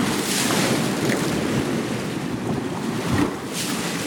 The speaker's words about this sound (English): Every night my family falls asleep to the sound of waves breaking on the shore. When we hear the water gather, lift, slosh, and churn, it's as if our beds are turning into beaches.